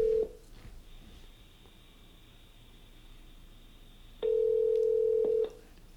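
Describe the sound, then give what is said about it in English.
Telephone call tones of a call placed at 8:30 to a correctional center in Shirley, Massachusetts: a short beep, a faint high steady whine under line hiss, then one loud, sustained ringing tone about a second long near the end. No one speaks. “That's when he's allowed on the phone. Let's see if we get him.”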